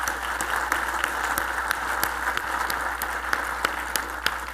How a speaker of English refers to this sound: So, great applause, and I'm going to say it again. Threefold female volunteer engagement increase in 5 years through Women in Industry.